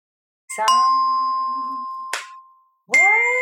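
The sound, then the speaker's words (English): Metal chimes struck, three clear strikes with bright ringing tones; the first two come in quick succession and ring out long, then a third strike sounds after a short pause. “So I would use some chimes, which I have here.”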